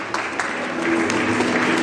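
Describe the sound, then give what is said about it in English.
Stockport football fans staying behind to applaud their team off: a steady wash of dense crowd clapping holding an even level throughout, with a few sharper individual claps standing out from the mass. “Lots of Stockport fans staying behind to clap the team off as well”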